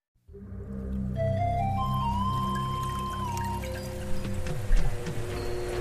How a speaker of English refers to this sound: You're hearing the paddle wheel cutting into the water, which is then pushing the water around this artificial stream so that we have stream flow like a real stream would have. We're in a room with 20 artificial streams, all part of a study